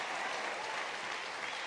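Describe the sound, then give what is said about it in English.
An audience claps steadily for a group of young people, the hand claps blending into a dense, even wash of applause that holds the same level from start to finish, with no voices standing out. “Let's get these young people a hand clap.”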